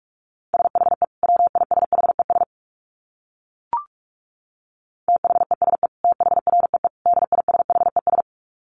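Rapid Morse code at 45 words per minute: a single steady mid-pitched tone keyed in fast dits and dahs, sent in two bursts separated by a pause broken by one short click.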